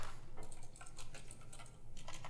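Rapid, uneven clicking of keys on a computer keyboard with a few sharper clicks mixed in, fairly quiet over a low steady hum, with no voices.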